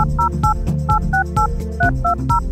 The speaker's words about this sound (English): Oh, there are those touch tones. They're here every week to remind me, to remind you to call into our listener line.